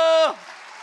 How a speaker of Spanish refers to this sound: ¡A ver ese aplauso!